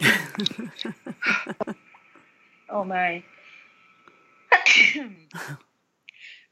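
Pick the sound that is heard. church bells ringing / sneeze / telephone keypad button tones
sneeze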